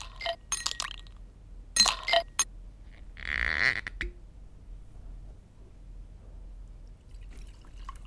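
Several sharp glass clinks ring out, then a brief gurgling stream of scotch pours into a glass for about a second, followed by quiet with faint rustling.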